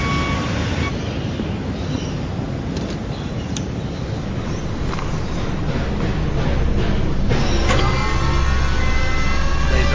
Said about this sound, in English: I don't know if this really proves it, but this guy pulls into a parking lot at a McDonald's.